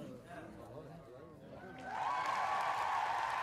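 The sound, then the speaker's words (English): A crowd murmurs and chatters, then about two seconds in it swells into loud, steady applause with high, sustained cheering and whoops rising over the clapping, as the audience stands up for the main speaker stepping onto the stage. “Applause and woohooing arose from the people standing up for the main speaker, dressed all in black, stepping up on the stage to announce the presenters.”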